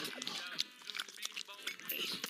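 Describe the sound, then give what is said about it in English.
A pet pig snorts and snuffles in a quick, uneven run of short, breathy bursts with no pause. “No, Jimmy, this is my pet pig.”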